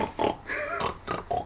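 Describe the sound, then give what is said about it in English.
A person imitates a calm, peaceful pig with a few soft, relaxed oinks and grunts in a slow, uneven rhythm, moderately loud, with no other talking. “That's what a pig in Zen sounds like.”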